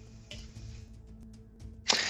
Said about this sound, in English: Right. And then I'm gonna roll my special dice again just because.